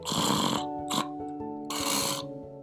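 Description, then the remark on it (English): A man snores loudly: a long, rasping snore, a brief snort, then another long, rough snore, with a low droning tone underneath. “So one stranger snored and the other sang.”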